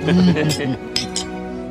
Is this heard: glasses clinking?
yes